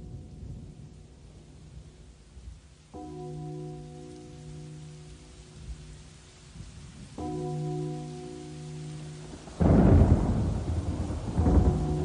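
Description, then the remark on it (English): A stormy scene with high winds: low rumbling thunder under steady rain, with two long droning tones sounding over it before a louder, crashing roll of thunder near the end. “Lightning streaks across the sky. Thunder rolls and the winds blow high.”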